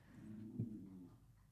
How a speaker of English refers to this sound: That's the wiener dogs. That was not my stomach.